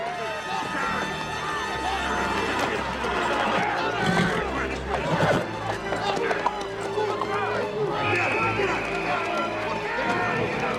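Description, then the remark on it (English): A dense crowd surges past with constant overlapping voices, shuffling footsteps and jostling bodies, a loud, busy wash of commotion that never lets up. “See how easily people can get trampled in a crowd like that.”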